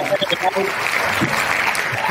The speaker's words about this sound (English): Yeah, I got to have a round of applause.